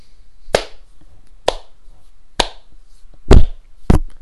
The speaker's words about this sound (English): Have I got a golf clap? I don't have a golf clap sound effect, so I will give you one.